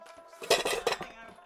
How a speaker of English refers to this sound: What am I looking at? It's a kitchen set of pots and pans.